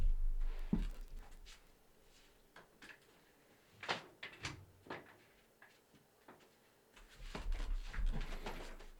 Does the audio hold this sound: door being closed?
yes